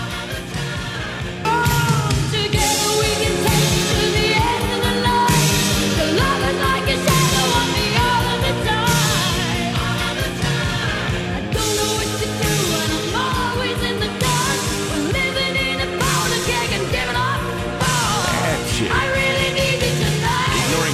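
A power ballad plays loud and full, a dramatic female voice belting over dense band accompaniment and a steady driving beat, kicking in after a brief quieter opening.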